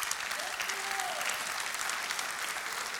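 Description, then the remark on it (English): Steady applause from an audience, dense overlapping claps filling the whole stretch at an even, moderate loudness, with a faint voice briefly audible underneath. “The reason why we're clapping is because secretly that's what we all want anyways, right?”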